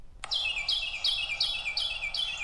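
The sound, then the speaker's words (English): A Carolina wren sings a loud, rolling series of about six identical bright, whistled phrases, evenly spaced and rapidly repeated, with no voices present. “Now, this is going to be a Carolina wren, so I don't want to confuse Steve too much, so I'm just going to go ahead and say this is the actual Carolina wren.”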